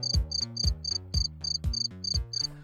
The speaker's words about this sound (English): Crickets. I should put some crickets in the background.